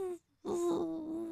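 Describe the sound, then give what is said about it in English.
A voice hums a steady, mid-pitched tone imitating the quiet movie sound design of a drone hovering in a hallway, breaking off briefly before resuming the same even buzz for about a second. “the drone flies in and hovers and watches this guy, and the guy doesn't notice it because the sound design of the drone makes it sound like it's going...”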